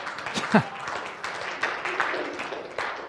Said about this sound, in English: You can clap.